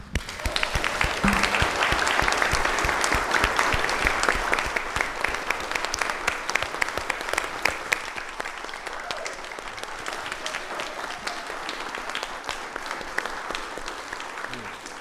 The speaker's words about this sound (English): By the way, they clapped on their own. It wasn't on the screen. It was not. Unprompted.